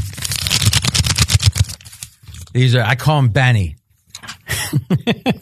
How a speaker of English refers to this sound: You're just ripping up like a printer paper trying to act like you got money.